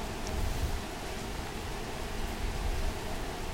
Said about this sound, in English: It's raining really hard right now in my place.